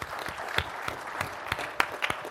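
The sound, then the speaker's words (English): An audience applauds, with many hands clapping in a dense, steady patter and a few sharper claps standing out. The sound is moderately loud and continues throughout, with no one speaking. “And actually, thank you for, you know, this has been a round of applause, please.”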